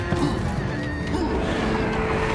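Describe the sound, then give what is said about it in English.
Busy video game audio with a crunching smash as a zombie is hit, layered over a dense, continuous wash of game noise and sound effects. “Yeah, he smashed the zombie.”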